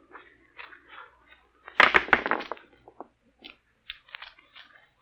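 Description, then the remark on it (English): Dice rattle and click in a series of quick, dry taps, building to a loud clattering burst midway, then scattered lighter clicks trailing off, with no voices. “Do you have to roll those dice?”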